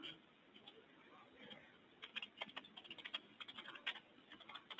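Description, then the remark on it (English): Rapid clicking of keys on a computer keyboard, quiet at first and then a steady run of crisp taps from about two seconds on, with no one speaking. “he would have edited all of this typing, but I refuse to let him do it.”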